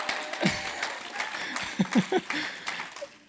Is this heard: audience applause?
yes